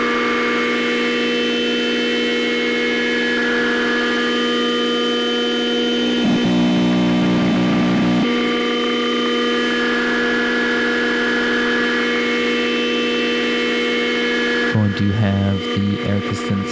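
A steady, buzzy modular synthesizer drone of three filters through a matrix mixer holds throughout, with the No Coast slope, a Diode Chaos channel and Swamp modulating a Wasp filter, broken twice by bursts of gritty, rapidly pulsing modulation before settling back into the sustained hum.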